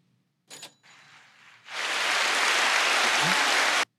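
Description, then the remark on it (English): A couple of brief noisy bursts lead into a dense, steady round of crowd applause lasting about two seconds, given for someone's recent retirement, which stops abruptly. No one speaks. “And so let's see if we can find a round of applause for that.”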